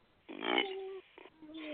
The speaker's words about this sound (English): I was talking about the burp.